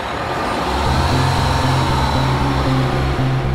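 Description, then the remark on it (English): A bus engine revs up and pulls away, a loud, steady low rumble with its pitch stepping upward through the gears. No one speaks. “Onto the bus.”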